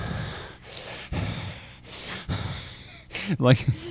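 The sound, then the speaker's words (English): A person imitates a boy's heavy open-mouth breathing: a series of loud, raspy in-and-out breaths, ending in a short voiced, wheezy exhale. “And he's always, super super heavy breathing, because that's what kids do.”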